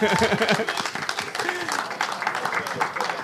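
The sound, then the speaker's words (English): A live audience applauds steadily for about three seconds, a dense, loud patter of many hands with a few voices calling out underneath. “Thank you, guys, for coming up. Round of applause”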